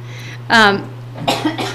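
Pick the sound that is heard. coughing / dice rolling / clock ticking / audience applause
coughing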